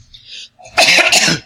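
coughing

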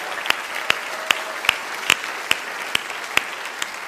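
audience round of applause

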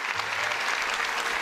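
audience applauding

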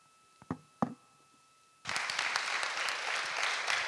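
audience applause

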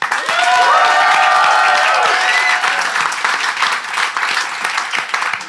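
audience applauding

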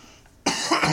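sneeze

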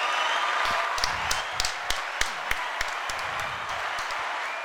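applause sound effect

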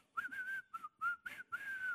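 person whistling a tune

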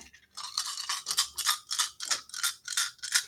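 dice rolling

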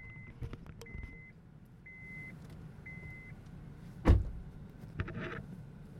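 car being started

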